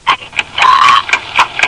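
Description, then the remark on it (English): A steady ticking with sharp, bright clicks at an even pace of roughly two or three per second, and a brief humming whine sounding alongside them partway through. “What's that ticking?”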